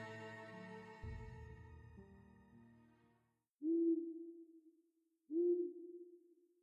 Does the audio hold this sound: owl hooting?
yes